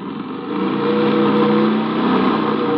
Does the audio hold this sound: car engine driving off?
yes